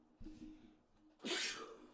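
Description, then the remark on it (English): A single forceful sneeze: a short voiced intake of breath builds up, then a sharp, noisy burst explodes and trails off quickly, heard on its own without talk. “Bless you.”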